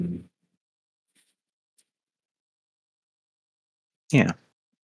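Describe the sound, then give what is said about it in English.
A dog lets out one short, sharp bark after several seconds of near silence, with a brief low thump at the very start and no talking. “Thanks, dog. fucking dog. We're just agreeing.”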